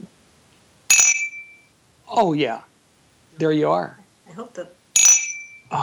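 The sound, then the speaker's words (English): Two bright, ringing clinks of a glass of just-poured bourbon, one near the start and one near the end, each with a short high-pitched shimmer, with a few casual spoken words between them. “I hope everybody heard that, because that's the moment that happens right before you sip it.”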